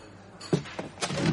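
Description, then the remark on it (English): A chair is dragged and shifted in a few short, scraping bursts, ending in a longer rough scrape, as a man sits down at a table. It sounds quiet, with no one speaking. “There's a man sitting at my table. The sound of the chair startled me, and although I feel like I should say something, I'm a little lost for words.”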